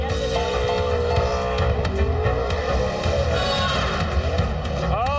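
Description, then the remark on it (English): A car doing a burnout at the Burnout Boulevard event: the engine roars loudly and steadily for several seconds, revving higher near the end, while tires squeal in a sustained screech throughout. Nobody speaks. “Whatever you do, go have fun, do a burnout, put on a show, but don't tear your car up. He tore the hell out of it.”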